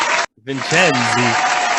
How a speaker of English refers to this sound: A remix of claps.